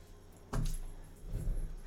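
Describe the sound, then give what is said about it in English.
A cat or similar pet walks across a computer keyboard, starting with a sudden clattering clack followed by a few muffled, uneven key thumps. “Whoa, Quinn, get off the keyboard.”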